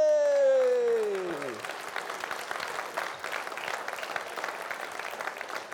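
A sustained tonal note slides downward and fades, then a church audience breaks into steady, dense applause that carries on evenly for several seconds, clapping for having raised the year-end money.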